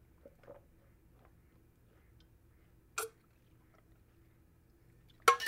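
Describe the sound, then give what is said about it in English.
Someone gulps down a drink of blue water: faint wet mouth clicks, then a sharp swallow and a louder gulping burst at the end, over a low steady hum with no talking. “Hang on, let's have a little drink of this blue water.”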